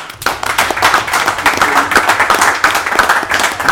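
A round of applause from a group: many hands clapping in a dense, steady patter that keeps a consistent, fairly loud level throughout, with no voices standing out.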